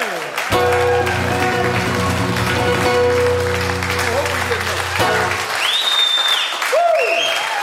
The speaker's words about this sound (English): I trust you've enjoyed the music. I've enjoyed playing it for you. I thank you so much for your kind attention, your applause.